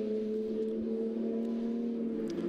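A Porsche GT3 Cup race car engine holds a steady, loud, high-revving drone for a couple of seconds during a 2019 race at Mid-Ohio, its strong tonal whine continuous with no voices over it.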